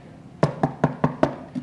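Six sharp knocks on a door in a quick, even rhythm, moderately loud, with a brief pause before the last one. No voices.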